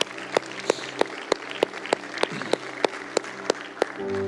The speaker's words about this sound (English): Come on, let's give God a round of applause today, can we?